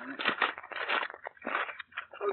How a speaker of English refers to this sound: Will you take the paper off that one, dear, while I take the one off this?